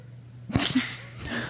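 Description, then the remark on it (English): A single short, sharp bark from Peanut, a small female dog, followed by a brief huff, over a quiet, steady background hum with no talking. “I don't know if you heard her bark, but...”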